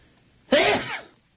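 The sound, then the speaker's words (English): A single loud sneeze bursts out suddenly with a sharp explosive onset, then trails off in a breathy hiss after about half a second, with near silence around it. “Bless you. Well, that sneeze reminds me that I'm going to Joyce in on the next break.”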